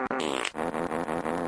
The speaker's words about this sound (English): Let me try to put together a machine gun of toots.